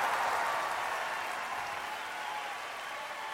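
Dense, sustained applause from a large concert audience in Palermo after a piano performance, a steady roar of clapping that holds at full strength for a few seconds with no gaps and no voices standing out.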